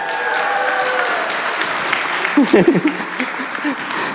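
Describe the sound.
An audience at a stage show claps steadily, a dense wash of applause lasting several seconds, with a few voices calling out and cheering briefly partway through.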